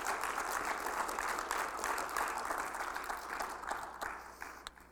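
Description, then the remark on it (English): A crowd gives a hand clap of praise to the Lord, clapping steadily in a dense wash of many hands with a few sharper individual claps standing out, fading slightly toward the end. “Why don't you give the Lord a hand clap of praise tonight?”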